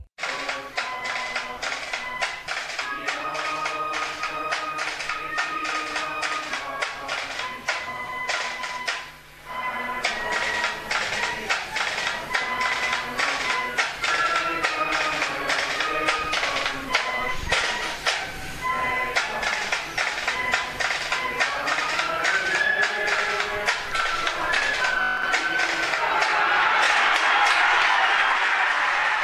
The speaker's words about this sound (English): The sun is shining here in UPMC Nolan Park. That was the Ballycallan Fife and Drum Band leading the teams here 25 years ago to the day.